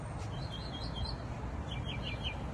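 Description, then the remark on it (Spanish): Small birds sing in quick, repeated chirping phrases, a short burst early and another near the end, fairly faint over a steady outdoor background hiss with no one talking. “Escucha a los pajaritos cantando, contentos.”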